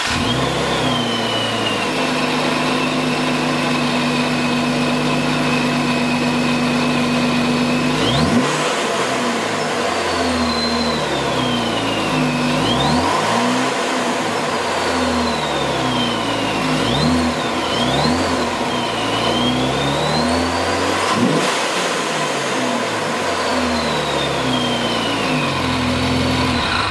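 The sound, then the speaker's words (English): A Jeep Wrangler with a newly installed ProCharger supercharger and tune loaded from a Diablo tuner is started for the first time: it cranks and catches, idling steadily before several sharp revs rise and fall, with a high supercharger whine sweeping up and down over the loud engine rumble. “Now finally, program your vehicle with your new ProCharger tune using the supplied Diablo tuner and fire it up for the first time.”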